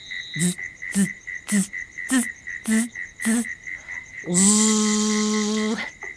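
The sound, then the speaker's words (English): A voice imitates cricket chirping with six short, evenly spaced chirps, then one longer drawn-out trill, all over a faint, steady high-pitched insect-like hum. “So can you make the sound of a cricket? Let's try it together.”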